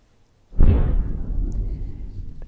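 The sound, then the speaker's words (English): A single loud, deep boom erupts suddenly from near-silence, then rumbles and rolls on with a long low-frequency decay, like an explosion captured outdoors: an unexplained boom on a security camera recording, Christmas night 2022, McMinnville, Oregon, 55 miles southwest of Portland, at 16:46 on the time stamp. “KPIC-TV received and broadcast two security camera recordings of loud, unexplained booms.”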